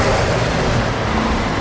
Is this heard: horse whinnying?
no